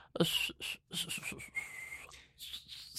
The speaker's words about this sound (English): And he started to whistle a very precise, clear, festive tune.